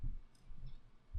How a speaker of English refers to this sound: And also, look at this cat. That's the cat rubbing on the microphone.